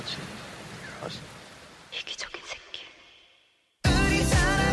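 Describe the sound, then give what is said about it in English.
Steady rain hiss with a few soft thumps from a played video in which people hug each other in the rain fades out into a brief silence, then a loud, dense burst of sound with voices cuts in abruptly. “They're so wet, they're all hugging each other. In the rain.”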